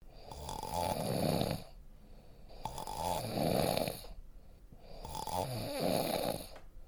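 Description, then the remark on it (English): A voice imitates classic snoring: three long, rasping inhales in a steady rhythm, each about a second and a half with brief pauses between, fairly loud, with no other talking. “I think there's a lot of different sounds that you can make while snoring.”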